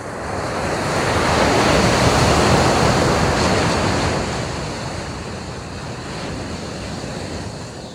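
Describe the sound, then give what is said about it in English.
Waves roll and break steadily on a black sand beach in Iceland at dawn, a broad continuous surf roar that swells loudest early on, then settles, with some wind rushing across the microphone. “Dawn at Black Sand Beach in Iceland.”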